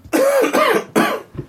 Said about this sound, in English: I know, I was being outraged at his coughing.